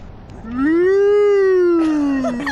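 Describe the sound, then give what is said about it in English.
A dog named Strudel lets out a single long howl that swells, holds a wavering pitch for about two seconds, then slides down. It is loud, with faint voices at the very end. “That's Strudel the dog.”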